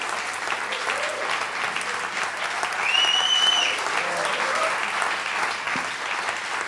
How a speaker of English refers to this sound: Okay. You can clap or something like that.